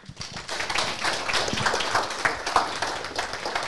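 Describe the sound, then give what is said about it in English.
An audience at a diocesan young adults' event applauds to welcome a doctor giving a talk, a steady wash of overlapping hand claps that rises quickly and holds at a moderate, even level for several seconds with no voices. “I hope you'll be clapping at the end of the discussion as well.”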